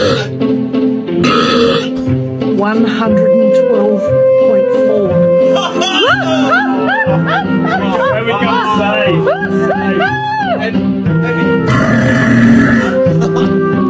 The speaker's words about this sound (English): Broke the record for the loudest burp registered at 112.4 decibels